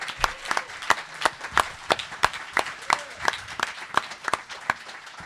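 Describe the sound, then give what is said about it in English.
A round of applause for a guest: sharp, steady claps repeating at a quick, even rhythm for several seconds, sounding like a small group clapping with no one speaking. “And a big round of applause for Joe Ryban.”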